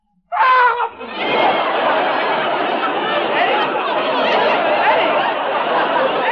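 A man lets out a loud, prolonged scream that starts with a brief tonal cry, then turns into a harsh, raspy wail held steadily for several seconds, alone.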